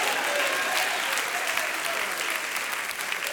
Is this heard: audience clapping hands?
yes